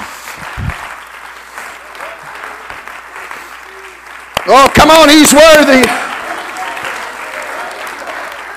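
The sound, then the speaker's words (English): An audience claps their hands unto the Lord steadily throughout, a dense wash of many hands, while a man's voice calls out loudly over it midway before the clapping carries on. “Oh, come on, clap your hands unto the Lord.”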